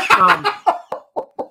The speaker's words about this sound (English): Cough, cough, Tom Hanks. Cough.